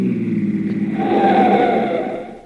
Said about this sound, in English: Hey, Bubbles, look out. Here comes a car.